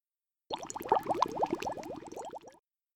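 Boiling water bubbles vigorously for about two seconds, a dense, close stream of rapid liquid pops and gurgles that starts abruptly and then cuts off, with no voices.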